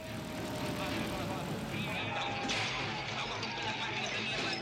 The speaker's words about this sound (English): I remember this plane. I always liked this plane.